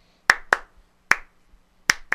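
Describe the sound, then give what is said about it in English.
Five sharp, crisp hand claps, someone clapping the clap line of a song, in uneven groupings: a quick pair, a lone clap, then another quick pair, ringing out clearly against silence with no voices. “I'm doing the clap line.”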